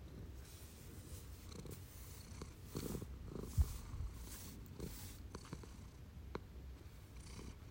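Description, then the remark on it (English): A male cat, sitting with a person while they record, purrs steadily, a low continuous rumbling drone that pulses gently with each breath, with a few soft brief rustles and clicks over it and no talking. “There's Shohei purring.”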